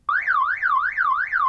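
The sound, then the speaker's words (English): A loud car alarm wails with a rapid up-and-down warbling siren tone, cycling steadily and continuously with no voices. “Did you know that Daryl Issa, the man who is spearheading the recall effort, is the man who gave you the car alarm?”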